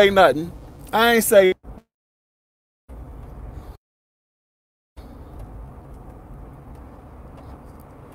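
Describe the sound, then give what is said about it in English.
A brief voice at the start, then the sound cuts out to silence twice, returning each time as a steady, low rumble of a truck driving on the road, heard from inside the cab. “I'm in the truck driving.”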